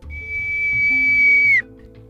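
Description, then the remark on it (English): A single shrill whistle blown on a carved half acorn cap, one steady piercing note held for over a second that dips slightly in pitch as it cuts off, over a low, soft rumbling background. “And Kira brought the carved half acorn to her lips, and she blew a single shrill note.”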